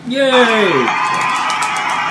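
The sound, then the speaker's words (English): A loud burst of group cheering, opening with a falling whoop from one voice before settling into a steady wash of many voices shouting and cheering together for about two seconds. “Is that cheering? Laugh track?”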